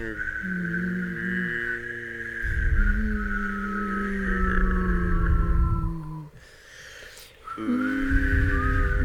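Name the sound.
whistling and humming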